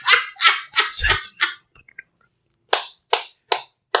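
A dog barks sharply, a quick run of about five barks, then a short pause and four more evenly spaced barks.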